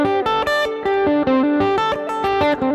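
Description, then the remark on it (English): A distorted electric guitar plays a fast, repeating picked pattern of bright, sustained notes with steady rhythmic attacks, the picking returning to a downstroke at the start of each pattern, loud and alone with no talking. “Yeah, so it's definitely like it's getting back for the downstroke for the start of the pattern.”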